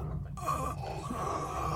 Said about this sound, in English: Are you having difficulty breathing, Morty? Is your throat constricting, as though some force were at work?